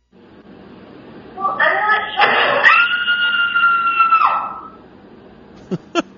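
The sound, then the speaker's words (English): A woman, left hanging with her underwear caught on a kitchen cabinet knob after jumping off the counter, lets out a loud, shrill, sustained scream lasting about three seconds, rising then dropping off at the end, followed by a couple of sharp knocks. “Screaming for dear life.”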